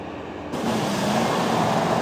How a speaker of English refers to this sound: Yeah, what a difference 24 hours can make. Traffic is moving along as it should, heading on to the bridge tonight.